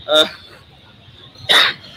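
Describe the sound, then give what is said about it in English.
Two harsh, raspy smoker's coughs, separated by a pause of just over a second, with a faint background hum between them. “excuse me, that's my cough. A smoker's cough.”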